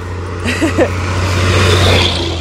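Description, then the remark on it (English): A truck rumbles past on a road, its loud engine drone swelling and fading over a couple of seconds with a steady low hum underneath. “And I think Oh, here comes a truck.”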